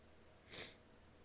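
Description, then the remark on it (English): A single short, breathy nasal sniffle after crying rises and fades in under half a second against a quiet background, with no talking. “Sorry for my sniffling. Happens when you cry.”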